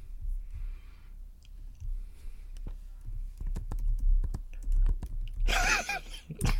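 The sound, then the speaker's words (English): Keys clatter on a computer keyboard in irregular bursts of quick clicks, sparse at first and then denser, over a low background rumble with a brief breathy noise near the end. “I like how we can hear you typing”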